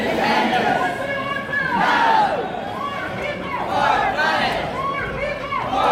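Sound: crowd chanting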